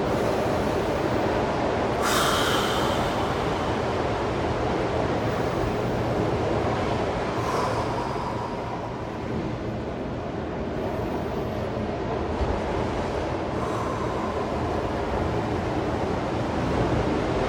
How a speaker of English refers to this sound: So as long as we have the ocean behind us, rolling in, might just kind of work with your breath. I like to think of the ocean as breathing. The exhale of the ocean is the waves crashing up. And as the waves roll back down, it's an inhale.